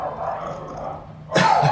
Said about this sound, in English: Talk over the dogs.